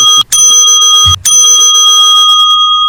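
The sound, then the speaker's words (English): A bright bell dings twice in quick succession, each loud strike ringing out with a clear, sustained metallic tone that lingers and slowly fades, with no voices. “Now here's where we have to have the bell sound effect.”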